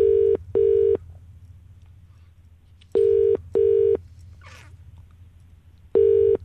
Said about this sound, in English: Just seeing if Eloise is going to answer the phone